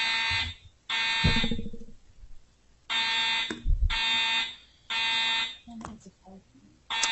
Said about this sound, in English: Okay, we're having a fire drill. I think we have to respect that.